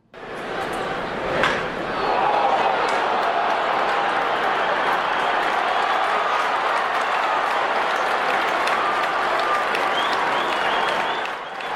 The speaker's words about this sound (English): Take a listen to the crowd after Varsho hits his blast to right field.